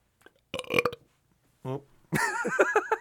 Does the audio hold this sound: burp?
yes